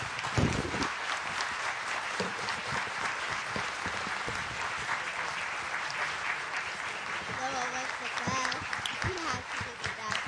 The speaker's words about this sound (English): So I know you want to give them some more applause. In fact, a standing ovation would be in order. So go ahead right now. There you go.